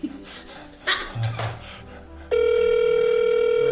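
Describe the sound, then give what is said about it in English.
After a couple of seconds of faint murmuring and brief bursts of sound, a telephone ring tone on the line cuts in abruptly: loud, steady and buzzy, holding to the end. “The rings continue. The pauses between them seem to get longer and longer.”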